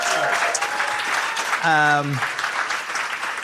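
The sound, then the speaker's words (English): A live show audience claps loudly and steadily throughout for Richard Feidler and Georgia Mooney, a dense wash of applause, with one brief sustained cheer or whoop rising over it midway. “Round of applause for Richard Feidler and Georgia Mooney.”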